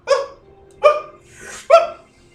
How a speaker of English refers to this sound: Yeah, the kids have a Yakky Terrier that starts barking, and they scoop it up and try to run into the next attic.